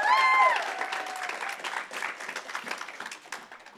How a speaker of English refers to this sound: Round of applause